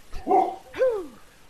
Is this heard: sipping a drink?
no